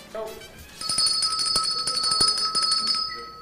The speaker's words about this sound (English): Jen is back on the bell. Back on the bell.